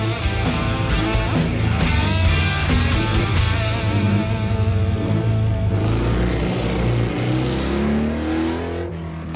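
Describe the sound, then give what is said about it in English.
Loud motorcycle engines rev in bursts, then throttle up with rising pitch as they pull away, the roar stretching out toward the end, as riders head home after an annual motorcycle club event. No voices. “The ride home, just long enough to dream up the next big adventure.”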